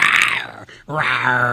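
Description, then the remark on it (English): A man's voice lets out a loud growling roar in imitation of a lion, breaks off briefly, then follows with a second drawn-out, rumbling vocal growl. “Rawr, Lion King shit right there.”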